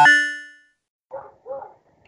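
A brief metallic ring fades out, then a dog gives two quick barks in a row, with no one talking.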